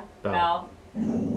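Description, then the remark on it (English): A female dog lets out one sharp bark, then after a brief pause gives a low, rumbling growl that carries on to the end. “No, she was like barking.”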